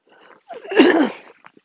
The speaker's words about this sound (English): Jesus, I'm so sorry for the coughing attack